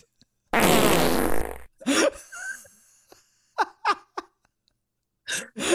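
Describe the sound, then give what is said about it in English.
A loud, raspy fart rips for just over a second, followed by a scatter of short breathy bursts that sound like stifled laughter and gasps. “That somebody requires surgery after they fart.”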